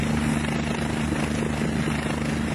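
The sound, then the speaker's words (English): A helicopter hovers overhead during the rescue of a skier with a broken leg, its rotor and engine producing a loud, steady, continuous drone with a low humming tone and no pauses or voices throughout. “Looking up towards the helicopter, nodding at the pilot.”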